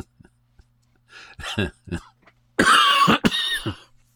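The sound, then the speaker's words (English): A person coughs several times, starting with a few lighter hacks and building into a loud, harsh burst of coughing before trailing off. “Just like coughing and giggling might also be a fairly significant clue.”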